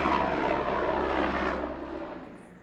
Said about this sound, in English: Let's pause for that helicopter.